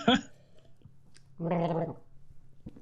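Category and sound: food or drink, sipping beer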